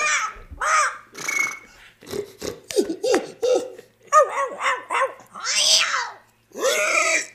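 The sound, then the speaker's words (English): A person mimics a dog, letting out a rapid run of roughly a dozen short, loud barks and yaps with brief gaps between them. “Well, if a guy brought a dog, a parrot, a rabbit, or an elephant, you'd be able to... I'd be able to make all the noises and draw them closer to yeah, me.”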